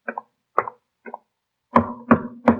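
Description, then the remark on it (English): Someone knocks on a front door: three light raps, a short pause, then three louder, heavier knocks with a hollow, resonant thud, with no voices. “He knocks on the front door.”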